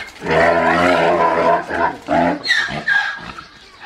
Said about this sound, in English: Another noise a zebra makes is called a bray. It's like a donkey, but with a bit of a low roar at the beginning